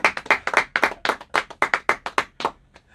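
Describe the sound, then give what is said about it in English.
Clapping from an audience for a pastor who officiated a vow renewal: a run of loud, sharp claps at a brisk, fairly even pace for about three seconds, trailing off at the end, with no talking over it. “Clap it up”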